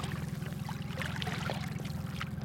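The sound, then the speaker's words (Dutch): A plankton net dragged through water, making a continuous rush of sloshing and trickling over a steady low engine drone, with no voices. “En je sleept hem nog gewoon lekker door het water?”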